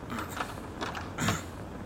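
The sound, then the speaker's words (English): A stuck door is tugged in short repeated jerks during a storm with heavy wind, each pull bringing a strained creak and mechanical rattle, the third pull the strongest. No one speaks. “I can't get the door open.”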